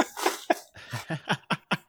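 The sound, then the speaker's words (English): A run of about seven harsh coughs in quick succession, each burst short and breathy, getting slightly clipped toward the end, with no talking. “I'm on a cough right now.”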